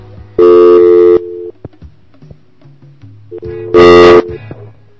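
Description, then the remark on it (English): Two loud, buzzy electronic tone bursts, each under a second, separated by a pause filled with quieter steady phone-line tones, like a busy signal heard while testing a telephone line. “Phone is working. I forgot to check the phone until the last minute.”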